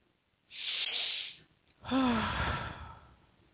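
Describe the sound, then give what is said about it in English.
A deep breath: a long airy inhale, a brief pause, then a slower, heavier exhale that ends in a faint voiced sigh, with no talking. “Breathing deeply, taking it in.”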